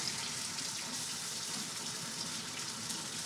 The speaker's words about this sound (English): Literally tonguing the pasta straight out of the water, chucking that in the pan. I don't know if you can hear the sizzle.